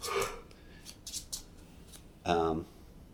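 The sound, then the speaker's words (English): A deck of cards being shuffled in during a card game: a few quick, soft papery riffles in a short cluster, with brief bits of speech just before and after. “Just shuffle your deck in.”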